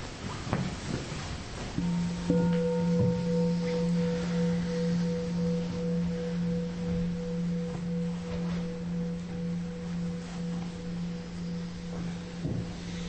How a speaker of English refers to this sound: And so I'll ring the bell and invite you to close your eyes.